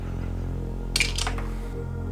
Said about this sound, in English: Let's roll the dice. Let's see who's going to choose.